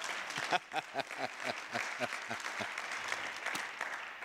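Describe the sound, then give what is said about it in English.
An audience breaks into steady applause, many hands clapping together in a dense, continuous patter that holds at a moderate level throughout, with a few sharper individual claps standing out. “If you're gonna clap, do it.”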